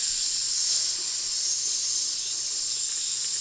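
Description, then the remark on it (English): A grill sizzles steadily for a few seconds, a loud, continuous bright hiss with faint crackle and no pauses. No voices are heard. “So, yep, start that grill, baby. All right, get a little spark going.”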